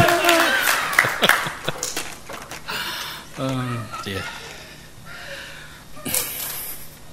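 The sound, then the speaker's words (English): An audience applauds in a short burst of clapping that fades after a couple of seconds, then people talk and murmur, with a brief flurry of noise near the end. “Round of applause.”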